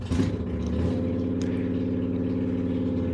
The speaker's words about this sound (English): Neighbor's turning his motorcycle on, so I'm about to be quiet for a little bit, so. Okay, but he's probably gonna try to, yeah, started it back up.